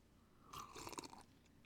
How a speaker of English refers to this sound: Speaking of water, let me have a sip.